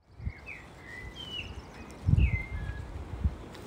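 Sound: outdoor birdsong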